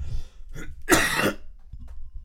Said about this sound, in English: Excuse me. So with that being said, and that was not a sneeze, that was a cough.